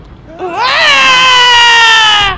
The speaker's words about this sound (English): I gotta do the mail scream. Hopefully this picks up because for some reason I can't see. Should I just scream?